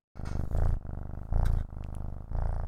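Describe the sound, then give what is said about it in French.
A small cat being looked after at home purrs steadily and loudly, a low rumbling rhythm that swells and eases in roughly half-second cycles with each breath in and out. “Si on entend ronronner, c'est un petit chat qu'on garde.”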